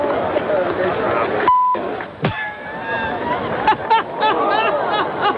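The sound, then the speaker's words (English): A golf gallery murmurs and chatters. The crowd noise swells and rises in scattered exclamations as a ball from an approach shot lands on the front of an elevated green and rolls back down the slope. A brief electronic beep sounds partway through. “You hear the crowd reacting afterwards.”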